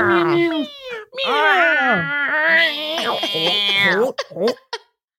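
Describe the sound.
Several people loudly imitate cats, overlapping drawn-out meows and yowls with wavering pitch, then break off into a few short, breathy hisses before falling silent.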